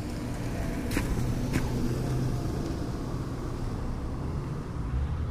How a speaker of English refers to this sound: Car just drove by. It was a little scary because it went over a puddle. I don't know what's in that puddle, but I'm going to guess it's piss. I'm going to hope that it's rain.